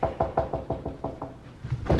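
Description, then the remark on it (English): A quick series of about seven firm knocks on a front door, evenly spaced, followed by a brief pause and a couple more muffled thumps. “Well, that's interesting, because he's at the front door.”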